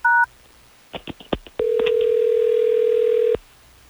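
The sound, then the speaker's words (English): A brief touch-tone beep, then a quick run of clicks as a telephone number is dialed, followed by one long, steady, loud electronic ringing tone, with no voices. “Well, let's get him on the phone so we can figure this out.”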